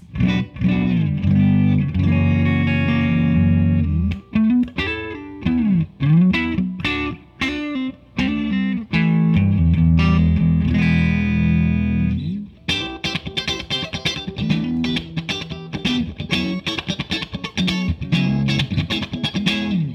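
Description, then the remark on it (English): A clean, dry electric guitar plays through a three-channel Triple Crown amp on its clean channel with the EQ set flat, shifting between sustained ringing chords and choppier strummed passages, fairly loud with no one talking. “we'll enjoy the dry sound for a minute because it does sound pretty good.”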